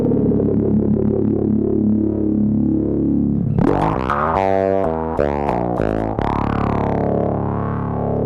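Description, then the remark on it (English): A bass guitar run through a filter pedal with built-in parallel distortion, the sweeping filter tone wobbling and then breaking into choppy, buzzing, harmonically rich notes, loud with no voices. “Having the distortion in there is like this beautiful plus.”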